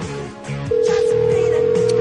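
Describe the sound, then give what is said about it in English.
A phone line's ringback tone cuts in after a brief moment, a loud, steady electronic purr holding continuously over faint background music as an outgoing call to Rebel Lynn rings. “Answer the phone.”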